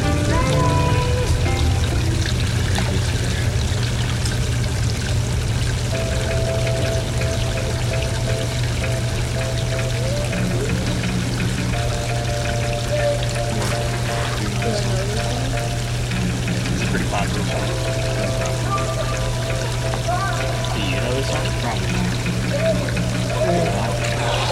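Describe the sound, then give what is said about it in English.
Water pours steadily out of a can that was filled with water in a hot tub, in a continuous, splashing rush that lasts throughout, with a low steady hum and faint voices murmuring in the background. “I purposely put it in and filled up with water.”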